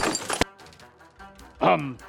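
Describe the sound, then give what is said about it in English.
A person tumbles off a ladder while changing a light bulb: a loud, rough crash and clatter that stops abruptly, a moment of near quiet, then a short pained cry. “Can you see I'm on a ladder? I'm gonna fall down and...”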